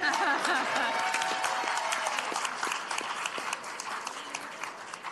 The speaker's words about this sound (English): Should I say it a third time? I got lost in the applause.